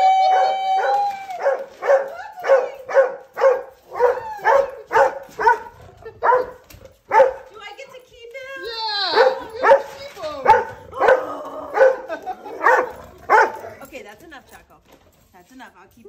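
A puppy, given as a birthday gift, yips and barks in quick, high-pitched bursts, a steady string of sharp squeaky cries with a brief whiny, rising howl partway through.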